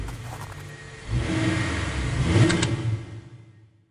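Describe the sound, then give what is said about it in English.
A single car engine swells in and revs up as it accelerates past on an icy bridge by the Leighton Tube station in East London, late at night, the roar peaking around midway before dropping off into silence. “But as Cardew crossed the street, a single car suddenly materialized on the bridge.”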